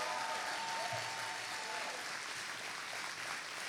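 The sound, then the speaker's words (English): An audience claps steadily as a clap offering to the Lord before prayer, a dense wash of many hands with no distinct beats, holding at a strong, even level throughout with a faint tonal hum underneath. “Stand up and get ready to receive it and give the Lord a big clap offering as we get ready to pray.”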